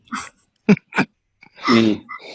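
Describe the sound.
A voice makes a few short, high yips in quick succession, like a small dog, then a longer whining yelp. The sounds are fairly loud, with brief silences between.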